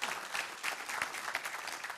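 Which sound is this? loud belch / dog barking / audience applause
audience applause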